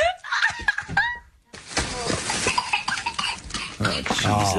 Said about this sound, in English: The video clip appears to show the child coughing, falling down, and crying. The girls can be laughing in the background.